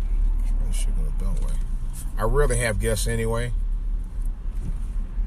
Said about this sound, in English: Not that, what's going on here today? It's traffic.